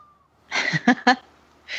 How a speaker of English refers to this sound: My cat. I'm sorry. You can pick her up and feed her.